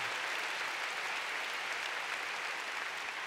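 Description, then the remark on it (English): An audience claps together for the Lord in a sustained, dense burst of applause, steady and fairly loud throughout, with no voices standing out above it. “Come on, give the Lord a big clap.”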